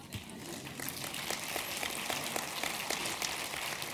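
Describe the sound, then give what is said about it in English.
A crowd at a Church Unlimited sermon applauds with a dense, steady wash of many hands clapping, sustained evenly for the whole stretch at a moderate level, with no one speaking over it. “Thank you for that clap.”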